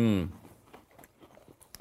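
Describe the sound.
A short voiced murmur, then crisp crunching as someone chews a crunchy cinnamon-bun-flavored cookie: a quick run of small, irregular crackly bites, fairly quiet, with one sharper crunch at the end.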